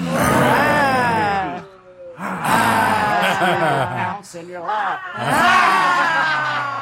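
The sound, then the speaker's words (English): People imitate lion roars with their voices in three long, loud, throaty bursts, each rising and falling with harmonic growling, separated by brief pauses, doing the lion laughter in a laughter yoga session. “me roaring like lions”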